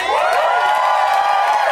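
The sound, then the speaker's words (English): A comedy show audience at UCB bursts into whooping and cheering for the host, high voices hollering together over a scattering of handclaps. The sound is loud and steady for the whole stretch. “You can't come with the first claps with a woo.”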